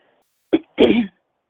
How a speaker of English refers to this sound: Good evening, everyone. Bear with me. I'm dealing with a little cough.